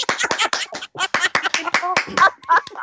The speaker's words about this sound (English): Round of applause.